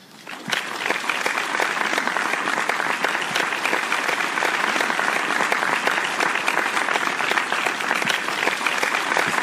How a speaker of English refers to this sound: Just straight up applause.